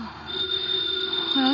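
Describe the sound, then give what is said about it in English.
A house telephone rings with a steady, high, shrill bell tone that holds unbroken for the whole moment, over a low murmuring background. “The phone is ringing.”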